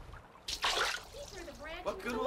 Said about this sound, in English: Look, Moses has a branch of a tree. This branch of a tree Jehovah has directed me to cast into the water. And the water will become sweet.